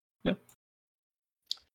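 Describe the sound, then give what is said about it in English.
Dice clatter briefly on a hard surface in two short bursts about a second apart, the first louder and fuller than the second, with quiet in between, rolled for a fortune roll in a game. “Why don't we just roll some fortune, like some obelisk fortunes, to see how it goes?”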